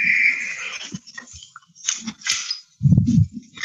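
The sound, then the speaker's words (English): A door comes open during a sermon as a dog wanders in: a thin squeak at first, then a scatter of sharp latch clicks and rattles, ending in a burst of low, heavy thumping and shuffling. “My door came open.”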